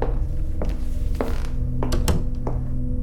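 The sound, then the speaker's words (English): A door is pushed shut, with a series of muffled thunks and a couple of sharper clicks from the latch over a steady low background hum. “You can close the door behind you.”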